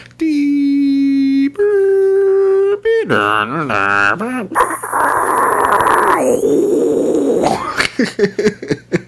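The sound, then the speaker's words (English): A voice imitates a 56K dial-up modem connecting: two steady tones, then warbling pitch sweeps, harsh buzzing static and a loud hiss, ending in choppy bursts. Loud throughout, no other talk. “And then finally when like 56K modem came around and you could just get on, it was cheap.”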